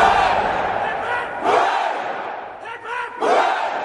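A crowd gives three cheers in loud, raucous shouts, swelling in three distinct bursts with brief dips between them, voices blending into a roaring chorus.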